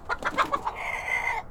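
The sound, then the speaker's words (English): A rooster named Diesel lets out a quick burst of sharp, agitated clucks that run into a drawn-out, strained squawk as someone reaches out to pet it, fairly loud with no one talking. “Richard also reached out to pet the rooster, but was met with a growl and a snap of his beak.”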